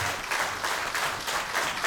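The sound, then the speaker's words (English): A baseball stadium crowd cheers and claps in a steady, dense wash of noise that swells slightly in pulses, with no single voice standing out, as the Crawdads are down to their final strike in the ninth inning, one strike from a Packers win. “And the Crawdads are down to their final strike, and the crowd will begin to make some noise.”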